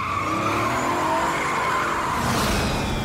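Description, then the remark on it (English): A truck's tires squeal loudly and continuously as it speeds away under a roaring engine after swerving on the road, the high screech holding steady for about three seconds with no talking. “Just get starts swerving on them and honking the horn, and he speeds off.”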